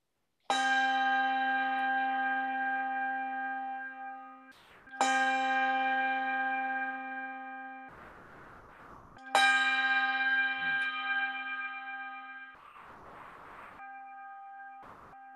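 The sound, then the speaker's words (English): A church bell rings out three loud, resonant strikes a few seconds apart to begin a worship service, each tone hanging and slowly fading, with brief bursts of background rumble between them. “So at this time, may we turn our hearts and our minds toward the worship of God as the bell rings and takes us in to worship.”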